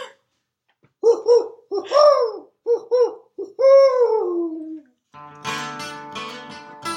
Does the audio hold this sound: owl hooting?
yes